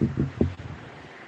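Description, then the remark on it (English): A steady, soft hiss of rain fills the short clip, with a few muffled low thumps in the first half second before it settles into an even wash. No one speaks. “All I hear is rain over there.”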